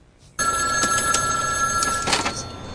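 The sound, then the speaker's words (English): A telephone in a phone booth rings with a steady electronic trill that begins abruptly and continues throughout, fairly loud, with brief bursts of higher warbling tones layered over the sustained ring. “You hear a phone ring and it could be anybody. But a ringing phone has to be answered, doesn't it?”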